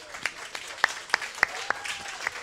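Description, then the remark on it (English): Sparse audience applause for military members from Fort Hamilton in Brooklyn, New York: a handful of sharp, separate claps at irregular intervals over a soft hiss, fairly quiet and with no one speaking. “They are behind me. Give them a round of applause.”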